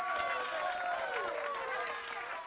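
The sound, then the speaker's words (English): An audience applauds with a dense, steady wash of clapping that holds at an even loudness throughout, mixed with a murmur of voices and faint cheering. “That was a little bit late, but I appreciate that round of applause.”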